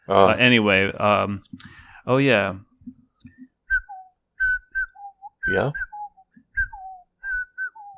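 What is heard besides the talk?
person whistling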